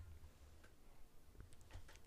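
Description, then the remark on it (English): Quiet shuffling and movement of people: scattered soft clicks, light knocks and low thumps at irregular moments, with no one speaking. “Y'all just heard movement. Y'all heard shuffling.”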